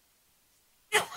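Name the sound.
sneeze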